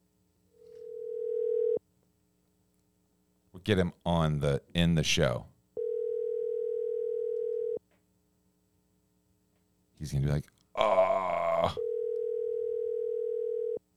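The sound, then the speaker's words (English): An outgoing phone call's ringback tone sounds three times, each a steady two-second electronic tone separated by pauses, as a man's phone is called, with a man talking briefly in the gaps between rings. “We're gonna talk to Jason Ellis if he answers his phone”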